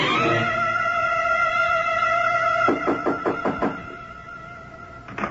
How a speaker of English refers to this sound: Wait a minute, I'll buzz the door for you. Come on up.